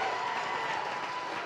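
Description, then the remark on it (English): A church audience claps steadily in a dense, continuous wash of applause, shouting and thanking the Lord, with a few raised voices mixed into the noise throughout the short burst. “Come on, somebody clap and shout and thank the Lord.”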